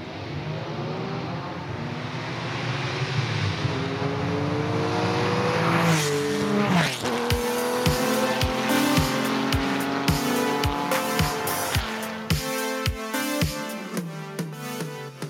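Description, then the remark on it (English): A car engine roars and revs with screeching tires for several seconds, then a punchy music track with a steady kick-drum beat kicks in over the engine noise. No one speaks. “Okay, a little bit more car.”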